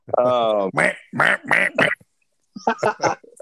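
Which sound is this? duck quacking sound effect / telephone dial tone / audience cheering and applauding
duck quacking sound effect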